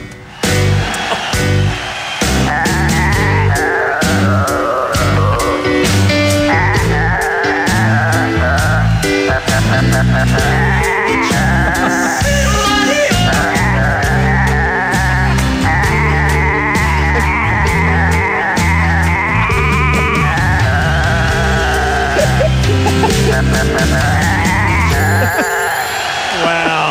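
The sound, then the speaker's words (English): Goats bleat loudly and continuously for nearly half a minute, their wavering, pitched cries strung together in a steady, rhythmic, song-like sequence with no talking. “What versatile goats.”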